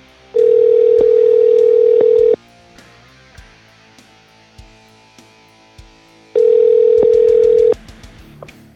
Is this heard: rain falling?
no